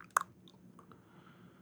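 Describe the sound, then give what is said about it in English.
Wet chewing of homemade pasta with shrimp: one sharp squishy bite near the start, then softer mouth sounds and faint clicks over a low background hum, with no talking. “I do have my little pasta back. Bitoles. Homemade.”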